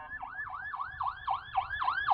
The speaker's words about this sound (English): It was an ambulance. It was a squad car.